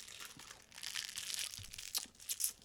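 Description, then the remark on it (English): Crisp crinkling of a thin gum wrapper being unwrapped at a microphone before the gum is chewed, a continuous papery rustle with a few sharper crackles near the end, no voices. “And that was like a whole ASMR segment with the fucking rapper and the mic.”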